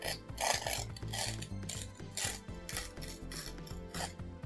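Paper tears in a series of rough, rasping bursts, roughly five in a row at an uneven pace, over a steady bed of low sustained tones. No one speaks.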